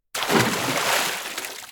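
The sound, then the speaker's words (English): A loud, sudden burst of water splashing and sloshing as something heavy drops into the water near a boat, churning steadily for over a second before easing off slightly. “Before they could get off of their ship, however, loud splashing sounds got their attention. Something was dropping in the water near the boat.”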